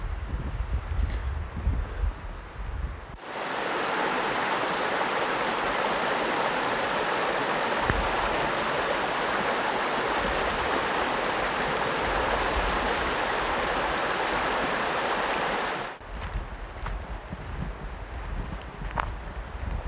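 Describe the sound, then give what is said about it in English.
A brook in the woods flows with a steady rushing babble that starts abruptly after a few seconds and cuts off near the end, leaving quieter outdoor ambience on either side. No one speaks. “Like the chickadees in the trees, the otters in the brook.”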